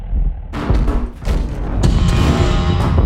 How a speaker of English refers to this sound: Alex and Henry manage to break the door down